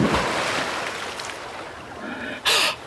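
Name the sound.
flowing river water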